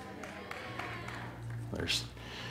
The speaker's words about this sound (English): I heard four people cheer and go, yeah, and the rest go, it's like, it's been tough.